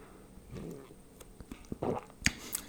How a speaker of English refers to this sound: Let me just take a sip and see if she's still reasonable.